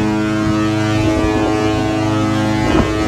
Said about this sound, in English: There's the foghorn. I told you you'd hear it.